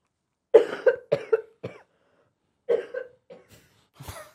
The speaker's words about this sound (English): You know what it is about that? Is that I feel like you're stuck, and you can't really cough the way you want to cough when you cough like that.